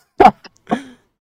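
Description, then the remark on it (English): Two quick bursts of someone blowing their nose, a sharp honk followed by a longer, wetter blast, with a tiny snuffle between and silence after. “I'm about to blow my nose.”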